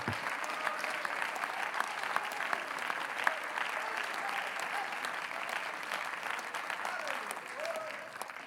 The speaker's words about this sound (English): here you are in the house of the Lord one more time, clapping your hands, worshiping God, magnifying His name, blessing His name. Why? Not because we're perfect, but because He's good. Oh, would you clap your hands unto the Lord?